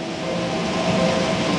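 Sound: air conditioner running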